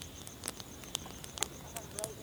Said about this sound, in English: The light is fading as the sun sets, which means it's time for the insects to come out and play. Can you hear the chirpy, ratchety sound of the insects? And the crackle and hiss of a campfire?